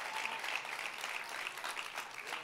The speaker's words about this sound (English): Come on, somebody clap right now and just thank God right now.